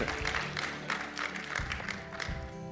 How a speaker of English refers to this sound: I thought I'd get a hand clap or an amen.